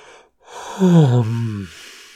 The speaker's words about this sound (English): The black-haired girl with the big brown eyes on the Queen's train coming into work so opens her mouth so beautifully wide in a yawn